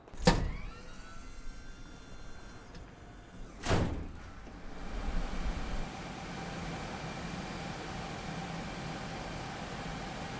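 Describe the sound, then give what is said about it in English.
A heavy server room door unlatches with a sharp clunk, a second loud clunk follows a few seconds later, and then a steady, loud roar of hard drives spinning, machine fans and hum swells in and continues. “Al's now opening the door.”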